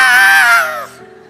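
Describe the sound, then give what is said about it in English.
A voice imitates a newborn baby's cry: one loud, strained wail that holds a high pitch, then slides downward and breaks off, leaving a faint low hum afterward. “Came into the world crying, screaming at the top of your little lungs.”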